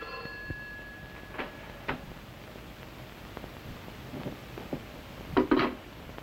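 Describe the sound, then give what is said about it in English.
A telephone rings in a hotel room in a few short, bright bursts spread across several seconds, fairly faint over a steady background hiss, with no one speaking. “So he's at his hotel room and gets a phone call.”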